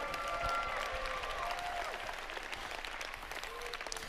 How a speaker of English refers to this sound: If you can testify to that in here today, let God hear your hand clap and your shout one more time.